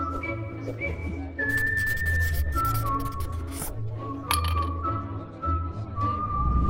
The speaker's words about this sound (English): That's Clarence Page, Pulitzer Prize winning columnist for the Chicago Tribune, trying to open the bottle.